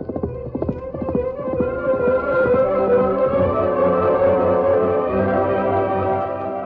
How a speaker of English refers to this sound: A few miles away, Bob Peters spurred his horse along Post Trail from Canyon City to Snake City.